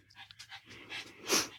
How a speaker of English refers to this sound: And if you hear panting, it's not an obscene phone call or an obscene podcast. It's Nathan. He is in here to grace us with his presence.